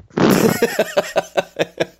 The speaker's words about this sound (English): That is me pulling up the mic and pulling it down again. That is some mic.